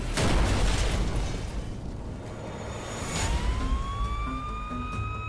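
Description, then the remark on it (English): A loud, deep explosion in Chugiak, a rural community about 15 miles outside Anchorage, booms at the start and rumbles off, then a siren begins to wail and rise partway through, with no voices. “A neighbor hears the explosion, calls the Chugiak Volunteer Fire Department.”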